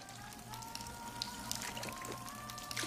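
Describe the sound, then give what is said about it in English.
A water pump spurting as it runs out of water: irregular splashy, crackling bursts of water over a steady mechanical hum, moderately loud, with no one talking. “This was an accident when it runs the water pump. Ran out of water. It just started spurting like that.”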